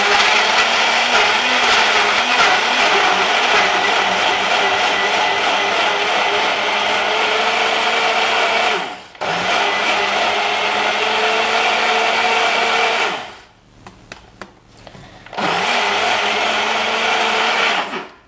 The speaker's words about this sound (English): Secure it in... to the blender and then just press blend.